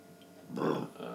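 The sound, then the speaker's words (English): A single low, rough burp erupts after a short quiet stretch, swelling quickly and fading within about a third of a second, followed by faint murmuring noise. “Stop burping on the podcast, please.”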